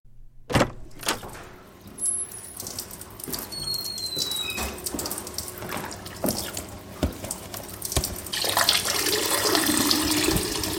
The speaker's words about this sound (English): Excuse me, can I just say that is one impressively strong stream of urine you're ejecting? It's like a Karcher pressure washer, but with lean.